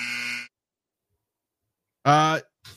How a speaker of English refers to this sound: I guess that's the buzzer.